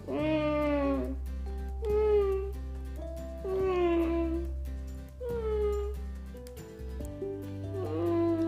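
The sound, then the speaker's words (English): A young child's voice imitates a cat, drawing out several rising and falling meows in a row over a steady low hum, fairly loud. “Meow. Oh, it's a cat. Oh, you're a cat. I love it when you're a cat.”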